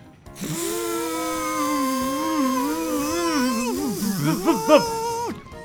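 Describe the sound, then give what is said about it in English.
A voice imitates a Hoover vacuum cleaner running, a steady droning hum that wavers in pitch for about five seconds, then breaks into quick rising and falling warbles before cutting off. “Let's try a Hoover!”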